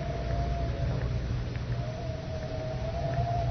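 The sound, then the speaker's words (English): Wind howls steadily over a constant low rushing roar, its thin whistling tone holding one pitch with slight wavers throughout, on a cold, windy afternoon on the lawn at the Tower of London. No voices are heard. “That wind cuts through you like a knife.”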